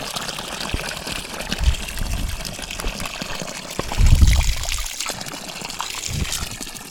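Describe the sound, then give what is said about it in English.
Water trickles steadily from a mountain spring on steep ground in dense conifer forest, bubbling out at a constant 6 or 7 degrees Celsius; a continuous babble with a few louder gurgling surges, heard alone with no voices. “And now, lo and behold, here's a spring.”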